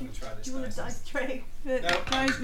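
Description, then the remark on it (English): Big metal dice, rolled for attacks in a game, clatter and rattle across a hard surface in a busy run of bright metallic clinks, with voices talking over the rolling. “Alright, that's what I'm using, my big metal dice. Oh, Christ, this is just the noise it makes.”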